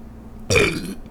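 A single loud burp erupts abruptly and rumbles for about half a second before trailing off into quiet, with no talking.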